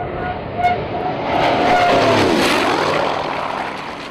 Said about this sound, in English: They were calling them Tiny Tim rockets at the time, and they proved very useful in air-to-ground attacks on tanks and bunkers, and they paired remarkably well with the Corsair's hellish dive bomb whistle.